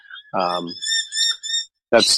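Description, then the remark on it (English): Birds chirp excitedly in a quick run of high, thin calls, several bursts in a row, while a voice briefly speaks at the start and again at the end. “The birds behind you are getting quite excited.”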